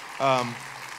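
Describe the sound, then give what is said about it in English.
Thin, scattered applause from a small church audience celebrating their pastor couple's 20th anniversary of founding the church, a faint patter of clapping with a single voice briefly calling out over it near the start. “That was a lame applause, by the way, just so you know.”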